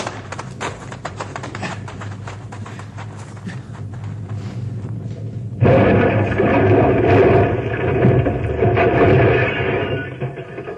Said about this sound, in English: Second rock came rolling down the mountainside and hit our car and flattened it. We get out just in time.